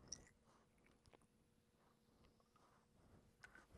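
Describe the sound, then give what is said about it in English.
Chocolate and peanut butter stout, nearly black with about a 2-inch head, fizzing in a Luigi Buomoli stout glass: a faint, steady crackle of tiny bubble pops with a few sharper clicks scattered through, and no talking. “Got about a 2-inch head on it. Nice tight bubbles. Very fizzy sounding.”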